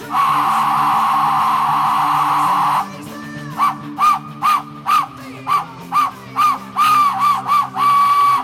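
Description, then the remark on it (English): A death whistle gives a piercing, scream-like wail in one long sustained blast, then breaks into a rapid series of shrill, wavering shrieks, loud. “I forgot to play the death whistle for Lance.”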